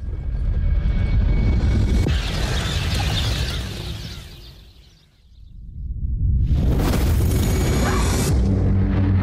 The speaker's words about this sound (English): One of the first chunks is about to hit. Only part of it. It's going to the ocean. Would you look at that? Wait, what is the explosion?